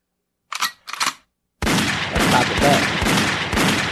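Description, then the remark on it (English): Two short, sharp bursts ring out, then a loud, sustained stretch of rapid gunshot sound effects with regular heavy thumps, like automatic fire, with no talking, played for Josiah's 14th birthday. “Get some gunshots for Josiah's birthday. Where the gunshots at?”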